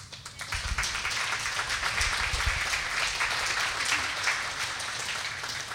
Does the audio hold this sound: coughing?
no